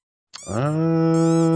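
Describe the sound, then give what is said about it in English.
A squeaky toy, one of several being piled up in a person's lap, lets out a single loud, drawn-out squeal that starts abruptly and holds steady, with nothing else around it. “He just keeps piling up all these squeaky toys in my lap and knocking the microphone around.”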